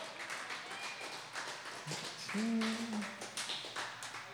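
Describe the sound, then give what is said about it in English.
An audience claps steadily and densely for several seconds to applaud a poet after the judges' scores are read, with a short whoop or cheer rising out of the applause partway through. “Applaud the poet.”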